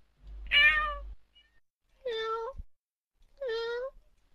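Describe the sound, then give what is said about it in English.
A cat meows three times in a row, each call a drawn-out, tonal wail with clear pauses between them, with no talking over it. “Is that a cat?”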